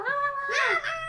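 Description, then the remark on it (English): A person voices a drawn-out, wavering meow, imitating a cat, in a fairly loud tone that swoops in pitch, with a brief second meow-like rise at the end. “Children, what did the cat say? Meow, meow!”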